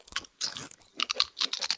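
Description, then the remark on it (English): Loud crunching of a crisp, smoky, slightly sweet barbecue-flavored snack being bitten and chewed, with several sharp crackly bursts in quick succession and a brief pause between bites, no talking. “Crunch it.”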